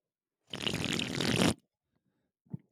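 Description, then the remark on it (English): A loud, wet slurp of a drink lasting about a second, a rough hissy gulp that is swallowed wrong and goes down the wrong pipe, followed after a pause by a short, faint throaty sound. “It was literally a slurp, but I kind of swallowed wrong, went out the wrong pipe.”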